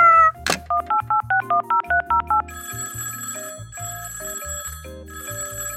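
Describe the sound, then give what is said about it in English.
A quick run of about nine touch-tone dialing beeps on a shell phone, clear, followed by a phone ringing in a steady repeating pattern. No voices are heard. “Now, where did we put that shell phone?”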